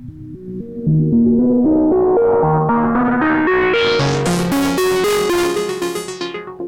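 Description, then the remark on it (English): A heavily modulated, wavefolded synthesizer plays a steady run of short pitched notes, about four per second, its tone growing steadily brighter and buzzier before fading slightly at the end, with no voices. “And then so this has got a lot of modulation. This example that's coming up.”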